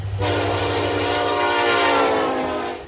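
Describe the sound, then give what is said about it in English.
A loud, sustained train horn sound effect blares steadily for nearly three seconds over a low rumble of rolling rail cars, prominent with no talking. “If you warn me when you're going to sniff into the mic, I can add a little train.”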